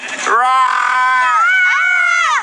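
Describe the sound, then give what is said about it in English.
A single loud, drawn-out, piercing scream, holding a high strained pitch for about two seconds with a slight waver before cutting off. “Wait a minute, did I just hear screaming coming over there?”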